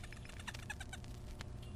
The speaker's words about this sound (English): You can hear some of the toys he brought in the studio, this little squeaky mouse toy.